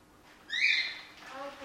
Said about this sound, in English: So this is Pikachu. He's a little cockatiel. So he came in, he was a stray that a member of the public just found and brought him here.